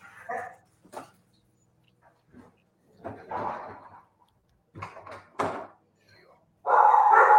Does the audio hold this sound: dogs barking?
yes